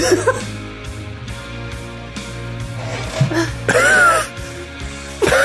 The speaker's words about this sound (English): One hell of a cough.